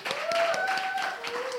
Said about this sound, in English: So please, as we leave, let's have one more round of applause, please, for my partner,